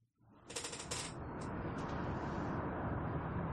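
Distant highway traffic fades in to a steady, low rumbling wash of noise, with a few brief hissing swells early on before settling into a constant drone.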